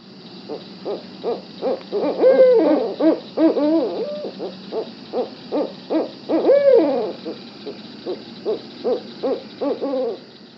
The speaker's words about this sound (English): And here's your typical barred owl call.